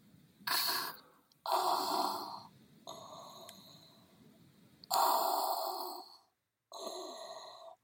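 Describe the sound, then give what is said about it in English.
Someone imitates heavy respirator breathing: five slow, loud, rasping breaths alternating in and out, with short pauses between them and no talking. “I think it would be unfair for you to do one and me not, but I haven't prepared one, but I'm going to attempt this, with the caveat the breathing will sound good and the rest will suck.”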